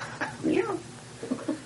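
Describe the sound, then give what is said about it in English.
A person imitates a cat's meow: one drawn-out, rising-then-falling voiced mew, followed by a couple of softer, shorter vocal sounds. “Meow. Does he make the noise?”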